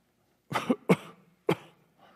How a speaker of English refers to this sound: That was a fake cough. I wasn't really coughing.